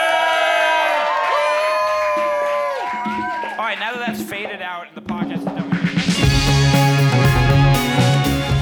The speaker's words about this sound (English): Everyone, that has been SpecScript. Give a big woo. SpecScript! Woo!